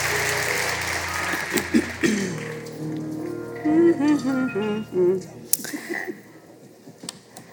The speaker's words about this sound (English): Won't you give the Lord a hand clap of praise as you take your seats?